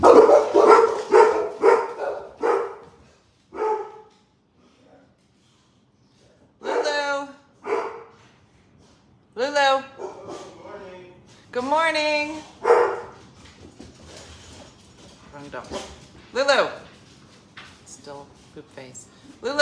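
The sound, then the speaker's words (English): A dog barks, first in a quick run of sharp barks, then in scattered bursts with whiny, drawn-out yelps between pauses. “She's a dog.”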